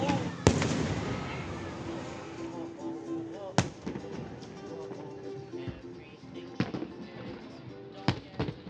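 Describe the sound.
Fireworks bang at irregular intervals, about six sharp, echoing booms over a steady outdoor murmur of background noise and voices.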